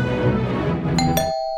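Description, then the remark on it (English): A front doorbell chimes twice in quick succession, a bright ding-dong whose second tone rings on and fades as a low rumbling background noise cuts out. “Someone's at my front door.”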